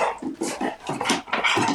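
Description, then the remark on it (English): A dog barks and growls in quick, agitated bursts, about five or six in under two seconds, fairly loud, with no talking over it. “Gotta bring the dogs on.”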